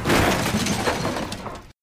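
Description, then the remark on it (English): Car tires screech as a car is driven drunkenly up onto a curb, in a loud, harsh, noisy burst lasting under two seconds, fading slightly before cutting off abruptly. No voices are heard. “As you hear there with the tire screeching, Marty is talking about rules in 2012 as he's flashing back to 1995 when he is breaking all these rules to drunkenly drive up on a curb and bust into Lisa's house to assault her new boyfriend”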